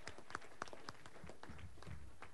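A crowd applauds the evening's MC, a dense patter of many hands clapping at once, steady and fairly soft, lasting a couple of seconds with no voices.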